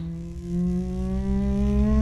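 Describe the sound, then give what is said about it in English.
A voice hums a low, steady drone that climbs gradually in pitch for about two seconds, imitating a machine revving up aboard a train, fairly loud with no words. “He starts, something's clearly revving up, at which point you start seeing minor arcs of lightning running down the cable in the middle of the train.”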